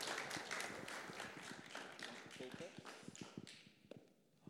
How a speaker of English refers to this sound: Do you guys want to give them a round of applause? Thanks for being brave and sharing with us.